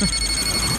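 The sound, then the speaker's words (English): A brief electronic starship hail signal, a steady, bright ringing tone like a telephone bell, sounding alone for under a second with no voices. “Captain, we are being hailed. Our first hail.”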